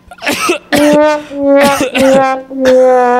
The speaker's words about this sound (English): Oh, your coughing is just making me sad.